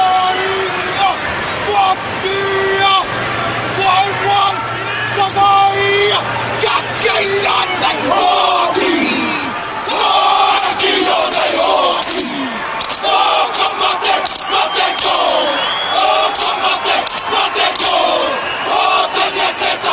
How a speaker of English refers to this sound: do this real cool thing where they chant and are sticking out their tongues and chanting in this, you know, native tongue here